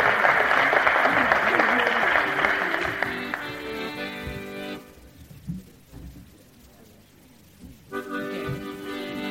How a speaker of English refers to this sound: Give him a clap anyway.